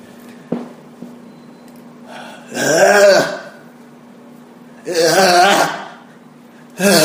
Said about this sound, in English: Is it as far as clearing your throat? Or? Yes, I'm okay. Preparing.